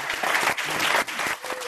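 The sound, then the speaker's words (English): An audience at the Commonwealth Club of California claps in a steady round of applause for the panel speakers, a dense crackle of many hands at an even, fairly loud level with no voices over it. “So let's give our speakers another round of applause.”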